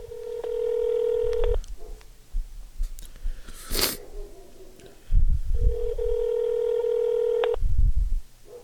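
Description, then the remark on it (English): A phone call to a woman ringing: two long, steady electronic ring tones separated by a pause of silence, with soft low thumps underneath and no one speaking or picking up. “There's no way this woman's going to pick up the phone.”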